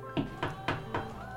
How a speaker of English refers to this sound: Knock on chair.